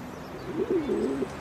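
Pigeons cooing softly, a low, throaty warble that rises and rolls in a couple of bubbling phrases over a faint background hush.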